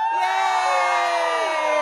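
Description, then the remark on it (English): An audience cheers and whoops loudly and steadily at a woman on stage announcing her pregnancy, a dense wash of high, excited voices with no one speaking clearly over it. “Oh, love people cheering the fact I've had unprotected sex.”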